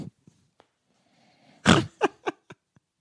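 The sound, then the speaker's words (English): A loud fart-like squelch, made by a woman squeezing her breasts, bursts out, then breaks into three or four shorter, fading sputters, with a few faint clicks before it and no voices. “I saw those big tits and I was just like, hey, why don't you show me how those big tits fart?”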